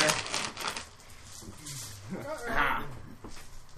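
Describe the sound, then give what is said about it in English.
A pile of dice dumped out onto a hard tabletop clatters in a rapid burst of small plastic clicks and rattles, with voices murmuring and talking underneath. “Dump out a bunch of dice, man. Don't roll on the table.”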